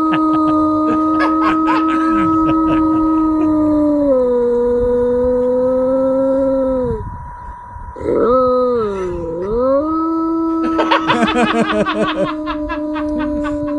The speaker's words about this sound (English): It is funny. So. You know, there's something funny about a dog howling anyway. Oh, yeah. Uh-huh. And just out of the blue, ours will howl for some reason.